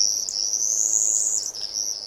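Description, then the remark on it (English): A steady, high-pitched buzzing whine of a bumblebee hummingbird, a tiny Mexican bird under 3 inches long, holding on continuously for about two seconds with a slight waver, clear, with no voices. “Less than 3 inches in size and weighing less than a bottle cap, they're easily confused with a bumblebee as they buzz by.”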